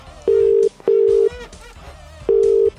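A telephone ringing tone heard while a Pure Radio presenter places a call to a listener: two short steady electronic burrs, a pause, then the pair starting again, loud and clear over faint background murmur.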